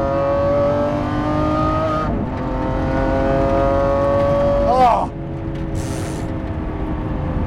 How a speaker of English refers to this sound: Oh, this car! I am driving a 2020 Lamborghini SVJ. This car, watch this.